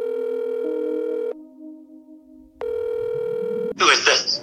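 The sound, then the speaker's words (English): A telephone rings with two long, steady electronic tones separated by a short pause, then a loud, harsh voice abruptly cuts in as the call is picked up. “That's not a nice way to answer the phone.”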